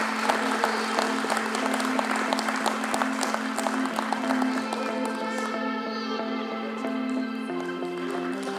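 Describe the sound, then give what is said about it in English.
An audience applauds a panel with dense, steady clapping that keeps up at an even volume for the full stretch, over a low sustained hum. “And a round of applause for the panel here.”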